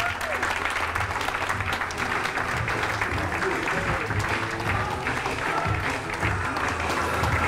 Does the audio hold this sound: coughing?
no